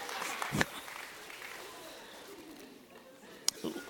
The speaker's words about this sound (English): Thank you for that one person clapping. I don't know who you are, but I'm going to come kiss you.